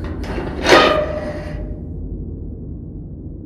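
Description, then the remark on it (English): A woman pounds on a door with her right fist, a lighter knock, then the heavy door slams open with a loud bang that rings out and fades over about a second, leaving a low hum. No one speaks. “With her right fist, she pounds the door. She pounds the door. She pounds the door. Slams open.”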